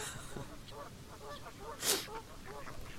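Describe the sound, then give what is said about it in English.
Ducks call repeatedly in a steady chorus of short, nasal quacks and honks, with one louder, harsher squawk bursting out partway through against soft outdoor background noise. “You know, the three of us probably fed those ducks together when they were chicks.”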